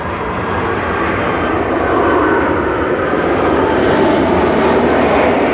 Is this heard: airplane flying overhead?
yes